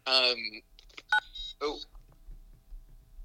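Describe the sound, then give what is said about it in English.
A quick burst of electronic phone keypad beeps, several short tones in close succession, fairly loud, followed by a soft low rumble as the phone is nearly dropped and handled. “Yikes, almost dropped my phone.”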